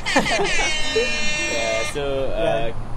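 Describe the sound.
A harsh, steady electronic buzzer, set off by pressing a button, drones loudly for a couple of seconds, then drops to a thinner, quieter tone, while people talk underneath it.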